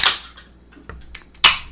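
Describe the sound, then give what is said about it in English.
Two drink cans from Vital Pharmaceuticals, Inc. crack open one after another, each a sharp pop followed by a short fizzing hiss, with a few small clicks in between and no talking. “Let's pop these bad boys open.”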